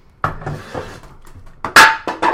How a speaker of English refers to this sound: Fucking throwing things around in the cockpit studios. I set it down and it just slid off the bar. That was not a set. That was a throw. That was a toss.